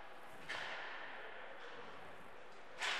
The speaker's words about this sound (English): Essenmacher with a slap shot from the top of the right circle that broke his stick